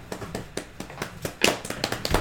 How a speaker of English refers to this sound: Pausing to clap for a moment.